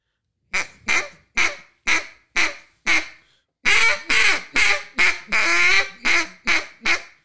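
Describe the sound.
A duck call blown quietly in a Cajun squeal: six spaced quacking notes, a brief pause, then a quicker, denser run of raspy notes, some drawn out. Fairly soft, with no voices.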